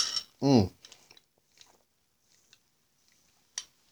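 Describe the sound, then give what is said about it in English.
A quick sip of apple soda, a Mercado, followed by a short satisfied voiced sound and a few soft mouth clicks and swallowing noises, then a sharp tap near the end. “Sip of the apple.”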